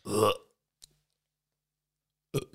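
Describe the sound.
A short burp with a throaty, voiced quality, then near silence broken by a tiny click and, about two seconds later, a second brief, smaller burp.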